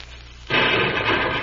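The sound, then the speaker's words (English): A dynamite explosion bursts in abruptly after a moment of low hiss, then keeps roaring as a loud, rough, sustained rumble until the end. “Pancho, light the dynamite away from Pancho.”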